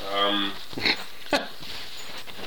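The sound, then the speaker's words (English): A dog gives a short, high whine, followed by two quick clicks or tag jingles as it roams around underfoot; no one speaks. “The dogs are roaming around underfoot, so if you hear a little jingle jangle”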